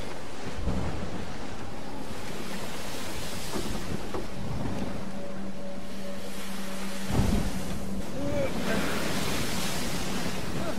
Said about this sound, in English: We're not getting anywhere. The winds are too strong. We should turn back.